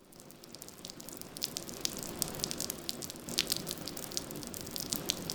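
A steady rain shower falls in South Florida with dense, irregular pattering and dripping, a continuous wet hiss with brighter drops popping through, moderately loud, no voices.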